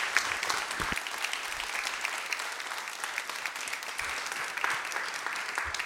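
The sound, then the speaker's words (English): Sustained applause from a large church audience standing to give a round of applause to a man of God, a dense steady patter of many hands clapping, fairly loud and unbroken for several seconds with no voices standing out. “And let's stand to our feet and give this wonderful man of God a beautiful round of applause.”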